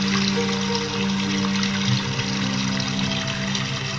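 Flowing, trickling water runs steadily for the whole stretch, a continuous wash of splashing over a low, sustained tonal hum, with no voices present.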